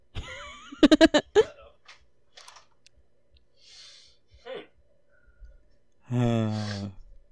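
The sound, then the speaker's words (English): A man coughs after laughing very hard, during an asthma attack: a quick cluster of harsh coughing bursts, then scattered quieter breaths and rustles, ending in a long, strained, wheezy voiced gasp. “I've made him laugh so hard, he started coughing.”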